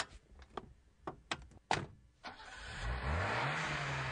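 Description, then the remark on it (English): A few sharp clicks and thunks, then the engine of a newly bought car starts up and revs, its pitch climbing into a loud, steady roar with no one speaking. “Hey, come outside. Check out my new car I just got from Riverside Premier Motors.”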